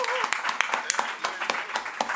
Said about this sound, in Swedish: Grattis till skivan. Grattis till skivan. En applåd för hans nya släpp.